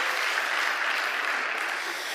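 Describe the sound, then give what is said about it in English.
A church audience applauds an answer steadily, a dense wash of many hands clapping at once, fairly loud and sustained throughout with no individual claps standing out and no talking. “That's a, give them a round of applause for that answer.”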